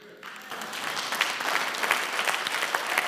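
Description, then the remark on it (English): An audience applauds: a dense, steady wash of many hands clapping that swells in after a brief moment and holds at a moderate level for a few seconds, with no voices over it. “Amen, that's a good time to clap.”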